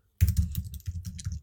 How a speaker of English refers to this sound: I'm only doing this because I've got a fancy new wireless keyboard and I've been looking for any excuse to type anything.